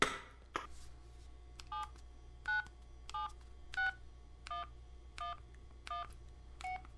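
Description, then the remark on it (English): A touch-tone phone being dialed: about nine short beeping key tones at a steady, even pace, fairly quiet, with a low hum underneath and no talking. “Where's that phone?”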